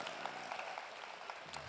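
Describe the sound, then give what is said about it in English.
An audience claps steadily after a children's nativity play, a dense burst of applause, many hands patting at once with a brief whoop or voice rising near the end. “Yes, round of applause.”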